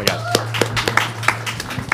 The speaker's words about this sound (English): I'll give time to clap.